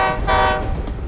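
A loud, sustained train horn blares with strong harmonic tones over a low rumble of rolling railcars, continuous for the whole short moment.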